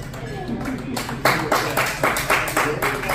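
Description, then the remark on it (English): A short burst of audience applause for a comedian's joke comes in after a moment, with fairly loud, rhythmic claps over a low background murmur of voices. “Wow, I have two rounds of applause.”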